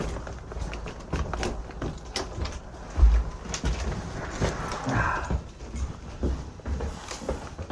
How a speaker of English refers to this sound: Oh, I'm sorry, ma'am. To let you get all the way through the door before shutting it.